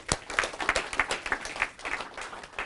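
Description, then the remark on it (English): An audience breaks into applause: a steady patter of many hands clapping at once, moderately loud and sustained for a few seconds with no voices over it. “So a round of applause. Round of applause.”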